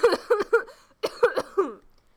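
A loud coughing fit: three harsh hacking coughs in quick succession, a brief pause, then another rapid burst of three coughs that trails off into a raspy breath.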